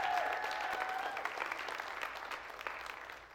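Steady, dense clapping from a church audience applauding a couple celebrating their anniversary, a continuous wash of many hands applauding together that holds fairly loud for a few seconds before easing slightly.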